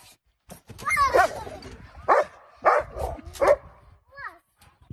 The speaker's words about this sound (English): Woof.